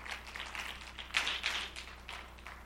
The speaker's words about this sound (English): Come on, let's give the Lord a good clap offering.